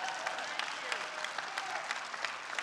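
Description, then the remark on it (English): A crowd applauds steadily, many hands clapping in a dense, continuous patter that stays fairly even throughout, with no one speaking over it. “You're like, well, you said to sell out, not to give a golf clap, and you're not even slowing down to give us a time to clap.”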